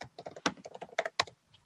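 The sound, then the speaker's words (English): Quick, uneven keystrokes clatter on a computer keyboard as someone looks up a song, about a dozen clicks in a short burst with a few sharper taps, fairly quiet, with no voices. “And I'm going to look up the song right now.”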